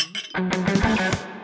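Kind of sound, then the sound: household object, glasses clinking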